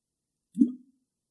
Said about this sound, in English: Can I just have a sip of my water?